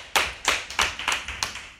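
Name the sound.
audience clapping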